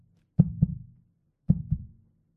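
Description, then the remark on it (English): A voice mimics a slowing heartbeat with two low, thudding lub-dub pairs spaced about a second apart, fairly soft, with a brief pause between them and nothing else around. “My sign out phrase is the sounds of my heartbeat going slow.”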